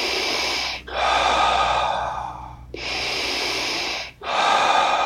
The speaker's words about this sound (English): Circular breathing is where you inhale through your nose, belly rises, exhale through your mouth, belly falls with no breaks in between. So it would look and feel just like this.